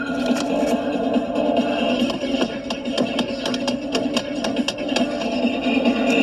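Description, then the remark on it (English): An Apple phone is repeatedly bashed against a hard surface, giving a rapid, irregular run of sharp knocks and clacks over a steady, humming background noise. “Literally just bashing the phone right there.”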